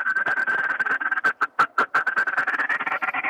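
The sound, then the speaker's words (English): A True Grit duck call blown hard to get the attention of migrating ducks at long distances, in a fast, raspy run of quacks that stays loud throughout and briefly breaks into a few sharper, separated blasts midway. No one speaks. “I mean, this is one of the calls that I go to when I'm trying to get the bird's attention. And this is what that sounds like, the True Grit.”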